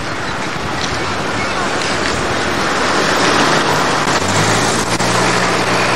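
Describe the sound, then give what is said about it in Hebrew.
Steady roar of street traffic with cars passing, then a bus pulls up, its low engine drone rising and idling over the constant wash of road noise. “עכשיו, יש באות מכוניות. תסתכל. הנה האוטובוס גם הגיע.”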